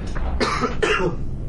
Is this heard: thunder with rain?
no